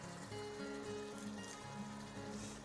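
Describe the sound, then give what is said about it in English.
Food bubbling and gurgling steadily in a pot on a stove over quite high heat, running continuously with a faint low hum underneath and no voices. “Okay, you can hear it bubbling away now.”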